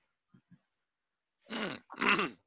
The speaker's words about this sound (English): Sorry, I didn't know I had to cough there.